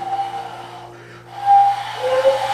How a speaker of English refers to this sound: You hear the wind whistling around you.